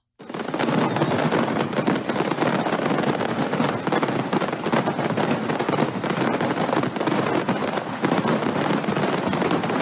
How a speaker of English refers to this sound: So, have you guys heard, do you know where Rostov-on-Don, Russia is? No. Okay. They have a fireworks store there. And have you ever wondered what it would sound like if they all went off? If a fireworks store caught on fire.